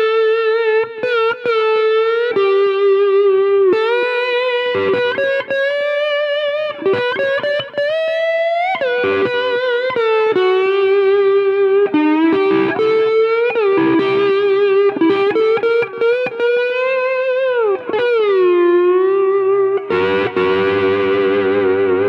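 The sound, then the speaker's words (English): Electric guitar through a small practice amp on its delay setting plays a sustained, bending lead line with a repeating delay trailing each note, loud, with no one speaking. “That's still on the delay setting.”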